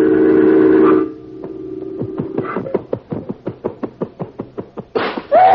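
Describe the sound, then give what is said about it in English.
A picture frame rattles against the wall in a quickening run of sharp knocks as a flying spider knocks it down, then clatters down near the end. A steady whistling hum comes first, and no one speaks. “The picture on the wall. He's knocked it down.”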